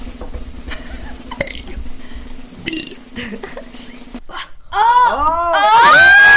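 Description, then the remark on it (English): A long, low, croaking burp is drawn out for several seconds as a man burps his way through the alphabet. It is followed by loud, excited shouting and cheering from other voices. “I'm going to burp the ABs.”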